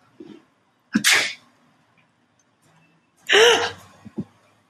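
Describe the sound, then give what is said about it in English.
A person fakes two loud, sharp sneezes at a cat to scare it away, each a breathy burst with a quick intake of breath around it, separated by a few seconds of near silence. “You know how you get rid of that cat? You have to pretend to sneeze on him.”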